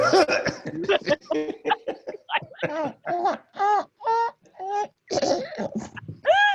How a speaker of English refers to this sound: Somebody cough. Oh, Lord have mercy.